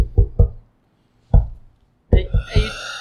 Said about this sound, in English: There's no knocker on that side. Mm. Yeah. I knock on the back of the door. Hey guys, can you hear this?